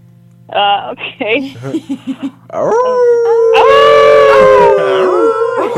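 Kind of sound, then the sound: vocal imitation, person imitating a howl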